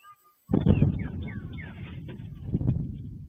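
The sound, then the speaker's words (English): A sonic boom from two jets flying over the Washington, D.C. area while chasing an airplane that went into a no-fly zone hits abruptly after a brief quiet, then rolls on as a heavy, rumbling roar with a second thump partway through, while faint bird chirps sound above it. “It's a little video of the sonic boom.”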